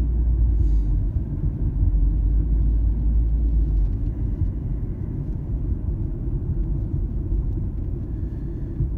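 Steady, low car engine rumble from inside a moving family car, a continuous deep drone with road noise that holds constant throughout, no voices present.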